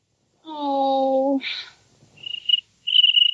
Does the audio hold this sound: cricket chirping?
yes